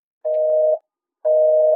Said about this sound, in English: And then, the line goes dead.